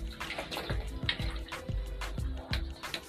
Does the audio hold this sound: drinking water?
yes